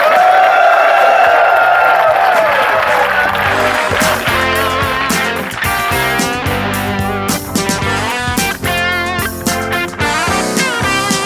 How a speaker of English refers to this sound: Well, guys, we're just about out of time, so I'd like to get a round of applause for the panel. Big round of applause.